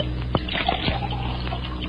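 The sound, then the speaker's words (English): Liquid, a beverage, pours steadily from one glass into the middle one of three empty glasses, a continuous splashing trickle with a few small clinks and gurgles, no voices. “I'm going to pour the liquid from this glass into the middle glass of the three empties on the right.”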